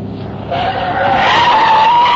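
Tires screech loudly in a sustained skid as a car makes a hard turn onto a frontage road, a rising squeal that holds steady for about two seconds over a rumbling engine, intense.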